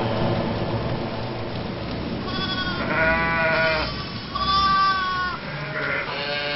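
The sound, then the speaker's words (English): Several sheep bleat in wavering, overlapping cries, two main bursts in the middle, over a steady hiss like pouring rain. The bleats are fairly loud. “I will do a miracle to prove it. Which will turn your audience into the sheep that they truly are.”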